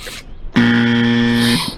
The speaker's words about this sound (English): Oh, we have a buzzer. That was aggressive.